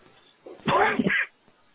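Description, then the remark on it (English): A single sneeze: a short breathy intake, then a sharp, loud, half-voiced burst lasting about half a second before quiet returns. “Bless you. Excuse me.”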